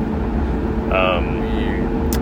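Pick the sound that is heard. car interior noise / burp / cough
car interior noise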